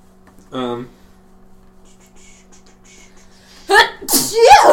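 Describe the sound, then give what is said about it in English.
A loud sneeze bursts out near the end, with noisy airy blasts tangled with a voice, after a brief vocal sound early on and a quiet stretch in between. “Bless you!”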